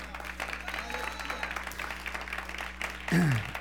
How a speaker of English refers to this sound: Okay, give the Lord a hand clap of praise.